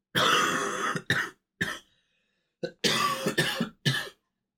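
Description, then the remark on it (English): A loud coughing fit: several harsh, raspy coughs in quick succession, a brief pause, then another cluster of hacking coughs, with no talking. “Do you have any more cough drops?”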